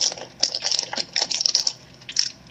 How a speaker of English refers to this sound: I just grabbed some plastic real quick.